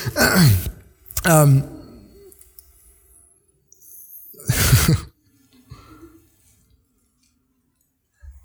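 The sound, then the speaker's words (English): A baby boy snoring: three breathy, wheezy snores with a slight squeaky pitch, separated by quiet pauses, and no talking. “That's my baby son snoring over there.”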